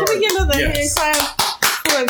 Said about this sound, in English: Well, he's always been guilty, but he has been found guilty. Like, can we get another hand clap?